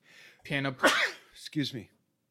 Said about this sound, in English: Excuse me. You okay? Yeah, just sneezing. Allergies, sorry.